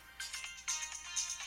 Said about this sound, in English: I've actually gotten more positive comments about my phone interrupting the show than of any other feature about this show